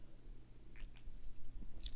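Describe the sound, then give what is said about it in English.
A couple of soft, wet slurping sounds, a quick sip of Diet Dr Pepper over a low steady hum, with no one talking. “Let me get another sip here.”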